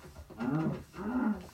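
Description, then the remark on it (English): A video game cow being killed lets out two drawn-out, low mooing groans one after another, each a rising and falling bellow, fairly loud with no talking over them. “He's murdering a cow.”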